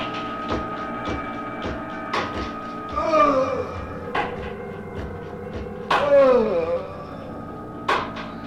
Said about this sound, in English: I can still hear the stake going through my heart as I lie in my coffin. Listen, you will hear it too.